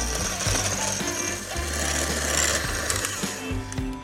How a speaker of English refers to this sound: A pint of heavy cream, and I'm gonna add to it 1/2 cup confectioner sugar. Just gonna whip this until it gets nice and stiff.